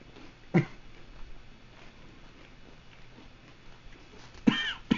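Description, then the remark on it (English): Two short, sharp coughs from a person eating, a few seconds apart, one near the start and one near the end, with quiet background noise in between and no talking. “I'm already coughing.”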